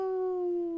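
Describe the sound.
A person imitates a wolf howl with a single sustained, steady vocal tone that slides slightly downward. It is clear, with no other talking.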